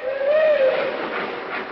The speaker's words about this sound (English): Yeah, there she goes. Seems funny to be standing here in the window of this hotel watching our train pull out, and we've got to stay here.